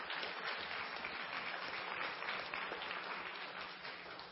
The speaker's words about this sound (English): Yeah, you can applaud.